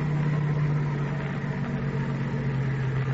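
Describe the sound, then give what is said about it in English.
A car engine runs steadily at low speed as the car pulls over under a tree, a continuous droning hum with a deep tonal rumble and no voices, holding an even level throughout. “I'll pull under that tree.”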